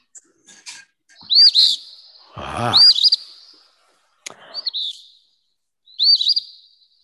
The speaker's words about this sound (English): Is it the Phoebe? It is. It's the Eastern Phoebe.